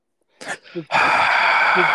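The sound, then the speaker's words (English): Heavy breathing right up against the microphone: two short, huffing breaths, then a long, loud, rushing exhale that roars with windy noise until the end. “There's like a heavy breathing.”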